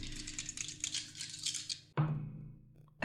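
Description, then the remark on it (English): Two six-sided dice rattle and clatter for a couple of seconds, then land with a sharp knock on a hard table surface, showing 5 and 6, with no one talking. “See, look, his dice do awesome in mine, stink. That's 5 and 6, so 11, 12, 15 points that Thump gets back”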